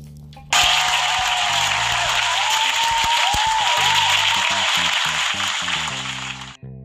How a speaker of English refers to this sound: Shout out to you guys, first and foremost. Yeah, round of applause for you guys, always in attendance with me.